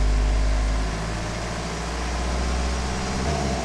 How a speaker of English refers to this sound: Even your car running is really bad for the environment.